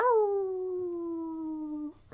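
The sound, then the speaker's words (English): A single long wolf-like howl from a human voice imitating a wolf, held for about two seconds at a steady pitch that sags slightly before cutting off. Clear, with no talking. “Let me hear your wolf howls.”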